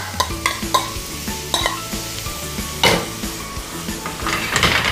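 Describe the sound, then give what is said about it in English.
Rice stir-frying in a hot pan, a steady sizzle broken by repeated scraping and clattering of a utensil against the metal, fairly loud, with no one talking. “We just stir frying, sauteing. So once we do that, get that going, we're gonna add our rice.”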